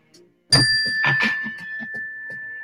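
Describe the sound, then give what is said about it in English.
A single struck bell dings sharply during a deep-breathing exercise, then rings out with a steady high tone that sustains and slowly fades, while soft rustling and small knocks continue underneath. “Did you hear it? The ding?”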